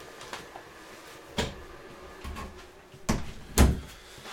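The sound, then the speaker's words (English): A door is handled and shut to keep out the hum of a Bitcoin miner: a few soft knocks and rattles, then a sharper thud near the end, over a faint steady background hum. No one speaks. “I'm going to shut the door so you don't have the Bitcoin miner humming in the background.”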